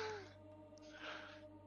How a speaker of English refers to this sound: Sniffling.